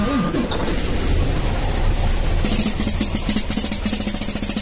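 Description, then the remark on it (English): A truck's steady engine roar with a broad hiss, then a rapid, rhythmic snare-drum-like rattle of sharp buzzing ticks kicks in halfway through and keeps going to the end. “Ah, that is a snare drum.”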